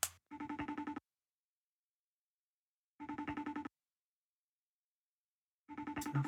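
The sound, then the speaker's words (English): An outgoing call to a friend rings through a phone line: three short buzzy, warbling ringback bursts, evenly spaced with long silent gaps between them, clear with no voices. “He's from Tasmania, and I want to call him up, and together we're going to answer some of your questions.”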